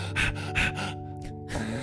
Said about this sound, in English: doing a lot of panting today, guys. There is a lot of coffee that happened. We both have the shakes. We both have coffee shakes.